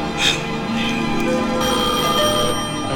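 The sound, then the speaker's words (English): A telephone bell rings steadily, a bright metallic trill that carries on for the full few seconds, fairly loud, with a faint murmur of background sound beneath it. “Answer that phone.”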